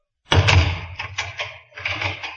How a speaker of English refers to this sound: That will be all, Akbar. You may leave the room and lock the door.